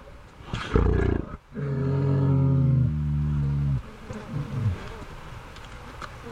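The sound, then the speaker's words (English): Insects buzz loudly around a bison carcass in Yellowstone in summertime: a short burst, then a steady, droning hum lasting a couple of seconds before cutting off, with softer rustling buzzes trailing after. No one speaks. “Insects buzz around, magpies chirp and swoop overhead.”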